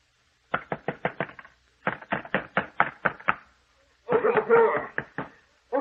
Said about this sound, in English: It will be your duty to get him to quiet down. Keep him from pounding on this door.